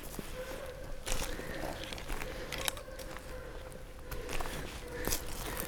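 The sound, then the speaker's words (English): A dog runs through woodland undergrowth, its feet making irregular crunching, rustling patters over leaf litter, with a few sharper snapping bursts against a steady faint hum; no one speaks. “You can hear a dog running through the woods over there, might be lost.”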